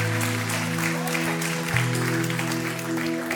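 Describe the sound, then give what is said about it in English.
An audience at a worship service applauds those who raised their hand and prayed, with steady, dense, continuous clapping, while sustained low keyboard chords hum underneath throughout. “Would you give those a round of applause who raised their hand tonight and prayed that prayer?”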